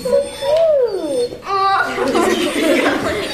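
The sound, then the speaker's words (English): Liberty, a golden Labrador and one of Milkbone's 10 dogs that have changed the world, who helps kids learn to read, vocalizes with a rising and falling whine-like howl, then a short sharp yelp, as children's voices and laughter fill the background. “A local dog with a special gift is helping kids learn how to read.”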